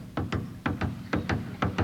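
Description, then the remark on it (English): The footsteps of a conductor entering the orchestra pit at an opera house, a steady rhythm of paired, sharp steps on a hard floor. They are moderately loud, with no voices. “Now I take you to the opera house where you hear the conductor's footsteps when he enters the orchestra pit.”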